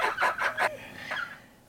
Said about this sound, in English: My bird is laughing at me. Yeah, I was going to say. I think he likes it, too.